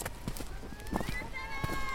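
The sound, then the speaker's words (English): Repeated footfalls thud and squelch in an irregular rhythm as several runners cover the end of a run over the cracked, muddy banks of a reservoir that is not full. Murmuring voices and a faint whistle-like tone sound in the background. “So the footsteps you're listening to are from the end of Run for Salmon.”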